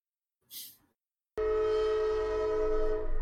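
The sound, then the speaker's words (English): A brief hiss of air, then a loud, sustained train horn blares, holding one steady, rich tone until the end with no talking. “Oh, wait, there's a train coming.”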